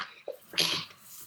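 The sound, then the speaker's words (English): A single sharp sneeze bursts out, preceded by a quick inhaled catch, with a short hissy explosive burst and then quiet. “Bless you.”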